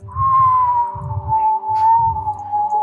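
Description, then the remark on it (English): A steady, sustained whistle holds a high pitch and drifts slowly lower, like something plummeting through the air, over a low rumbling rush of wind that swells and fades in pulses. “Hear a whistling, this...”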